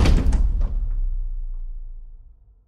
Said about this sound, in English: She slammed the door so hard, a picture frame fell off the wall, shattered on the ground.